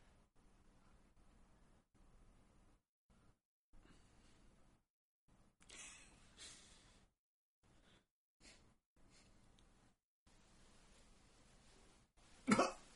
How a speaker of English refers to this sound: Coughing on his own dust.